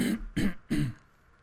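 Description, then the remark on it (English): Three quick, rough throat-clearing bursts in a steady rhythm, fairly loud, in the First United Bank studio just before the dad joke of the day, followed by a brief quiet tail. No one speaks. “Wait, you're clearing your throat.”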